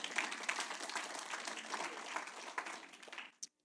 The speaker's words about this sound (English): In Jesus' name, amen? You could clap for that one because that one's for him.